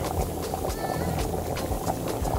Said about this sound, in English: So I'll just check on my rice now. I think it's boiling.